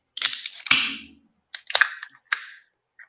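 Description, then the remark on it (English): Several Braxton Brewing beer cans, from a brewery in Covington, Northern Kentucky, crack open one after another, each a sharp metallic pop followed by a short fizzing hiss, with a faint final click at the end and no talking. “And so, gents, let's crack these.”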